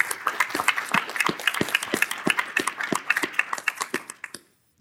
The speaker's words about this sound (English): So with that being said, I just want to give them a round of applause and say thank you.